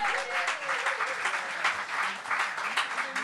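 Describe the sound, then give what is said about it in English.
Sustained audience applause for a returning panel, a dense steady patter of many hands clapping at even loudness throughout, with no voices standing out above it. “Keep the applause going, please”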